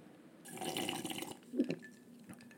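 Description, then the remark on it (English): Coke is poured into cups with ice cubes for about a second with a fizzy, splashing rush, followed by a brief clink and a few small drips, fairly quiet, with no voices. “poured cups of Coke and put in ice cubes”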